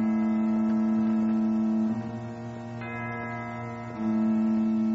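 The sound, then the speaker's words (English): A deep church bell in a church tower across a meadow tolls slowly at 11 o'clock, three strikes about two seconds apart, each ringing out and overlapping the next in a loud, sustained hum with no voices. “Just then, the church sounded its bell.”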